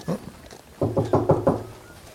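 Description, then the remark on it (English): A short run of four or five firm, evenly spaced knocks on the wooden door of a house in the daytime, fairly loud, preceded by a couple of fainter taps. “Can we go and knock on the door?”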